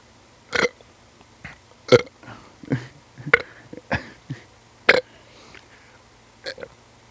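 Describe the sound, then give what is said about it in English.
A string of loud burps, about seven of them, coming in irregular bursts with short gaps, some sharp and some drawn out, with no talking in between. “So that was some good burping right there, my friend.”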